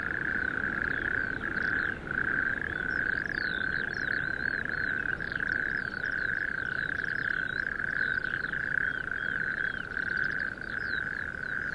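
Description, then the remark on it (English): A dense chorus of toads in sandhills trills continuously and loudly, a steady unbroken purring drone throughout, with faint high chirping calls flickering above it and no talking. “Maybe I'm becoming obsessed by singing toads and wicked golfers”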